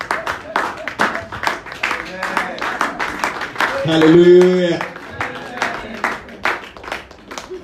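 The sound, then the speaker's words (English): A church audience applauds to welcome the man of God, with steady, loud clapping that runs throughout, while a voice calls out over it and a drawn-out sung or shouted exclamation rises in the middle. “Welcome the man of God. Round of applause.”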